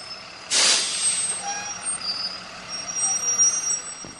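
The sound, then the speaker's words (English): A school bus's air brakes let out a sharp, loud hiss in the morning, then the engine idles with a steady rumble and a few faint high-pitched tones. No one speaks. “his freshman classmates catch the bus every morning.”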